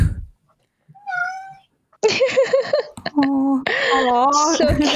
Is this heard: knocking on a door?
no